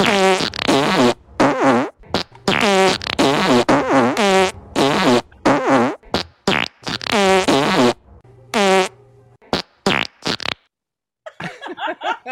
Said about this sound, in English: Wow, that was like a chorus. God, farts. Those are all farts I heard in real time and watched them being recorded.